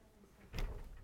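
A single door slams shut, a muffled thud with a short low rumble trailing after it, against otherwise quiet surroundings.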